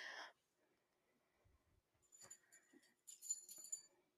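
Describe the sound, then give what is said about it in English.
A female pet dog whimpers in short, high-pitched whines, in two brief clusters after a quiet stretch, fairly faint and without any talking. “If you guys But can hear my dog, sorry about that. She's for some reason going crazy today.”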